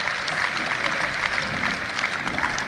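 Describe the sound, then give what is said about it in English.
Steady applause from a sizable crowd, many hands clapping continuously, with a dense, even texture and no voices standing out. “He was applauding for himself.”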